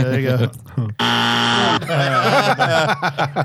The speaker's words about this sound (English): The buzzer